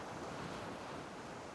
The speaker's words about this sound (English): Your breathing may even sink with the slow waves coming in and out, and back and forth, and you relax with each time they come in, as it moves over your feet